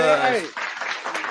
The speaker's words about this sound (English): I'm just gonna applaud you right now, man.